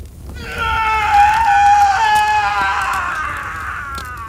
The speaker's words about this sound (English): Just listen to him scream. I dare say it, he almost sounds happy. And why shouldn't he? His sin is being consumed by the fire so that he may be pure again.